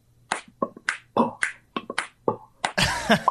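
Rapid, crisp finger snaps mixed with clicking mouth and tongue sounds form an irregular rhythmic pattern, ending in a louder, denser burst of noise. No one speaks.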